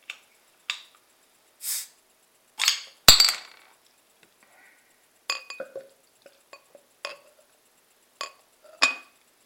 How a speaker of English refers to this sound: So there's your bottle cap. They've got the custom bottle caps, the Ninkasi. Let's get this out into my glass and see what the world's best porter from 5 years ago tastes like.